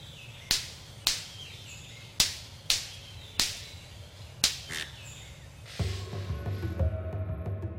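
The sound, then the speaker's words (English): Male golden-collared manakins, a tropical bird, smack their wings together behind their backs while leaping between saplings to attract females: sharp, loud snaps, about seven cracks at uneven intervals, some in quick pairs, before a steadier tonal hum takes over at the end. “They're smacking one another behind their backs with such force as to make a loud snap.”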